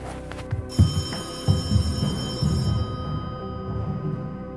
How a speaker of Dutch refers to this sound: Wat is dat? Telefoon. God, dat ze nog bellen op dit uur.